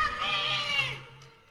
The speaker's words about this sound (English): I'm here in San Francisco, as you can tell. There's a lady screaming. Someone stole her bicycle. So ignore that.